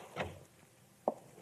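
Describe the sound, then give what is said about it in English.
A door opens quietly as a man warily enters, with a soft scraping sweep followed about a second later by a sharp click or thump, with no talking. “Chadwick and I, in an adjoining room with the door cracked, watched his wary entrance.”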